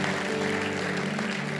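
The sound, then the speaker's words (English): A church audience claps steadily as a clap offering to the Lord after a prayer of salvation, a dense, continuous wash of many hands at even loudness, with sustained low musical tones humming underneath throughout. “Let's give the Lord a clap offering this out.”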